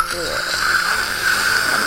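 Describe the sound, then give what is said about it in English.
A voice imitates a kettle nearing the boil to depict flames taking something up: a steady, breathy hiss with a thin whistling tone that holds for about two seconds without breaking into a full whistle. “And this sound like a kettle approaching boiling, but not quite whistling yet, as these flames take it up.”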